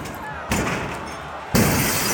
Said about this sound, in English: Just after 2 p.m., rioters break through a window of the Capitol building and haul open the doors for others to follow them inside.